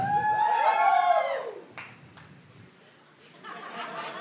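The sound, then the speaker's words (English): An audience, asked to yell if young or young at heart, lets out a brief burst of yelling and cheering that fades out, followed by a couple of scattered claps and a thin murmur of voices. “Give us a yell if you're young or young at heart.”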